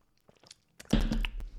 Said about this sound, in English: Let me have a sip of coffee.